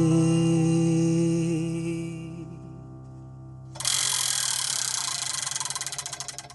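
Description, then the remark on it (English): A spinning wheel, the Wheel of Eight, whirs, then breaks into rapid, bright clicking that gradually slows as it winds down, loud with no one talking. “And now, to engage the Pop Oracle, I'm going to spin the Wheel of Eight.”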